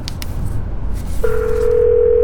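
A few quick clicks over a steady hiss, then a loud, continuous telephone tone cuts in and holds until the end, like a dial tone after a number is punched in, on a call to OH Internet Providers.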